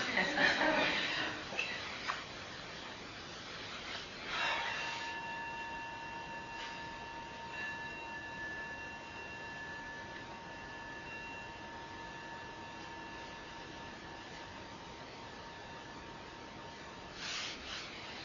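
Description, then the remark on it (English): A single meditation bell is struck and rings out with a steady, pure tone, its harmonics holding and slowly fading over many seconds in near silence, with a faint rustle near the start and end. “Yeah, why don't we just ring the bell?”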